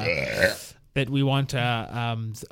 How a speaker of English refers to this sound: smelly burps.